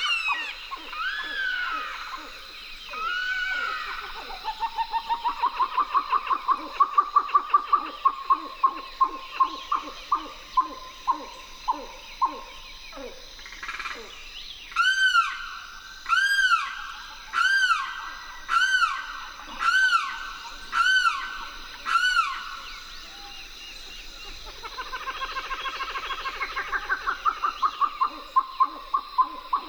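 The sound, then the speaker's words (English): Outdoor bird sounds in a riverine marsh at the Wakissa River's edge in Florida: a rapid, chattering run of grebe calls gives way to a series of loud, harsh, repeated red-shouldered hawk screams, with a limpkin calling among them and no talking. “Lang Elliott and Ted Mack went to the Wakissa River's edge and recorded chattering grebes, a limpkin, and the harsh call of a red-shouldered hawk.”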